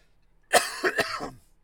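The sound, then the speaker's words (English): A short burst of coughing and throat clearing, several rough bursts packed into about a second, fairly loud, with no talking. “Stop coughing, …. I feel like I've literally got a frog in my throat right now.”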